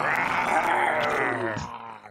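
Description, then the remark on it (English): Several people let out a loud, sustained roar together, voices imitating a beast, one thick layered cry lasting about two seconds before trailing off. “we're just gonna roar for Jesse until he can show up”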